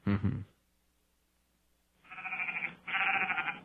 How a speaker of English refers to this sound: And what does that sound mean? That's a sheep. Like, yeah, right. When do I play the sheep sound? You know, when someone's being a little sheepish or something.